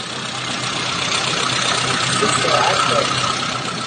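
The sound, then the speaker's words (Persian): A car engine running on hydrogen instead of petrol, fed through a hose to the carburettor, idles steadily, a continuous even rumble with a faint rattling hum and no pauses, heard on its own without any talking. “اینم صدای موتور، من صحبت نمی کنم، صدای موتور رو گوش کنید.”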